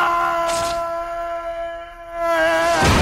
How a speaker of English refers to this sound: Here's a great falling yell. Here's someone yelling and falling. I can't remember who. It may have been Peter Parker. Oh, no. This is Thomas Hayden Church or whatever his name is. Here it is.